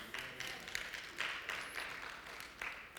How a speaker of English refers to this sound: I'm glad you clapped because you don't know what I'm going to say next.